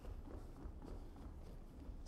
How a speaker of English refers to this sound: Stomp your feet a little bit. Come on, everybody, stomp your feet.